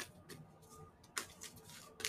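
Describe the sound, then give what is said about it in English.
A deck of tarot cards being shuffled: soft, papery riffles and flicks with a few sharper snaps, quiet and unhurried, and no one speaking. “Do we have any other updates while I'm finishing up my shuffle?”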